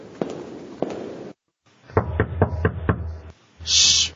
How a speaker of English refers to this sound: Shh. Shh. What was that? Someone's knocking on my door. You're just imagining things. I could have sworn someone just knocked on my door.